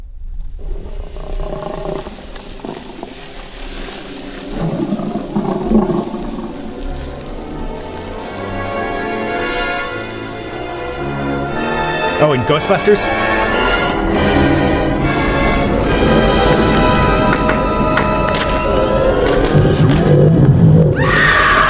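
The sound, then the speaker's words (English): An eerie, wavering groan from a refrigerator drones on and swells louder, its tones bending and gliding in pitch, with a brief spoken question heard over it. “Yep, I think that's what's going on with my refrigerator.”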